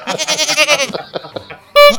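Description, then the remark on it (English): A male goat bleats loudly in a long, wavering cry lasting about a second, followed by softer grunting noises and then a sudden sharp, short bleat at the end. “I'm talking about you, goat. He's always so. I know, he's mouthy.”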